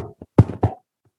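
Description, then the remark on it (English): A heartbeat sound effect made with a chamois cloth: a few muffled, low thumps with a soft lead-in, two strong beats in quick succession, then a faint trailing tap, with no talking. “Chamois cloth is really important when you're doing live shows for the squish and bore sound effects. If you get it wet, but it can also be a really good heartbeat.”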